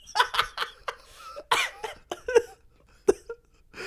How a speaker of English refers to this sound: I have the hiccups now, which is not good for doing an audio podcast.